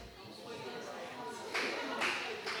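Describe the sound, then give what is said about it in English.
An audience breaks into applause, a dense wash of many hands clapping that swells in a few louder bursts toward the end, with faint crowd voices mixed underneath. “Don't applaud for that, please.”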